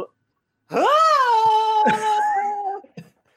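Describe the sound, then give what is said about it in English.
A voice imitates Tom Cruise screaming in an airplane: a loud, drawn-out scream, rising sharply in pitch and then holding a steady, strained wail for about two seconds before breaking off, with a brief vocal catch at the end. “I'm going to channel Tom Cruise in that airplane with none of the special effects, just him screaming, okay?”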